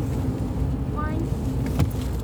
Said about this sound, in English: This truck pulled up, but...